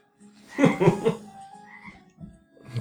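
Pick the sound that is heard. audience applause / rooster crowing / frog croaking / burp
frog croaking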